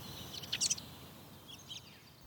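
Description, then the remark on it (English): A crow gives two faint, brief calls before flying away, the first a little stronger and the second about a second later, over a low, steady background hush with no one talking. “It regarded Robot for a second, then said something before flying away.”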